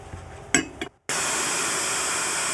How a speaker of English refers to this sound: So we fine strain this into a glass, which has been blast chilled using liquid CO2.